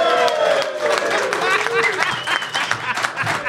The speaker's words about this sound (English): Guys, would you make some noise so when we broadcast this, people can actually know that there were other people in the room? So, yeah. Peanut just, gallery. Just let them hear it.